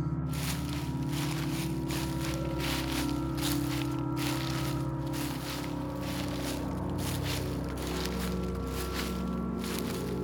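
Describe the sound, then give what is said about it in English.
Slow, heavy footsteps crunch and rustle through dry leaves in the woods, each step landing with a crisp crackle over a low, steady droning background. “Heavy footsteps and crunching leaves.”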